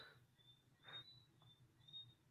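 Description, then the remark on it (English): Faint, high birdsong repeats in short chirping phrases about every half second over a low, steady hum like a fan running. “I can hear his fan though. Or the birds, I mean. Birds.”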